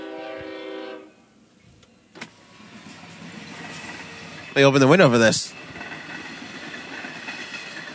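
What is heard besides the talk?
train passing outside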